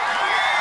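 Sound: crowd cheer sound effect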